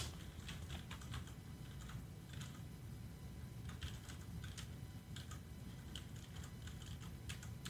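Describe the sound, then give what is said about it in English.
Rapid, uneven clicking of keys on a crumb-covered mechanical keyboard, steady with bursts of fast keystrokes over a low background rumble, no voices. “I'm actually just trying to base it on the keys, not on the filth on the keyboard.”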